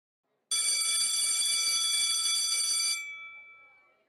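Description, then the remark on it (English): A school bell rings loudly and continuously for about two and a half seconds, a bright metallic clang, then cuts off and its ring fades away, at Sydney Girls High School, Surrey Hills, in November 1948, as students rush out from room A6 for lunch. “A school bell rings, and a wave of students rush out from room A6 for lunch.”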